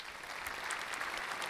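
Polite, restrained applause from a small audience, a steady patter of light claps at moderate volume with no cheering or voices, like a quiet golf clap.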